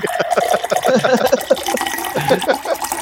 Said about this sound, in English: Let me pour you a drink.